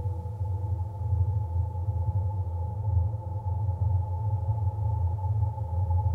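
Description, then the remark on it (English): Old clock chimes, transformed with sedimentary and metamorphic processes like those of rock formation, stretched into a steady, humming drone, with a heavy low rumble and faint sustained tonal lines above it, holding unchanged without clear strikes or voices. “The chimes from old clocks.”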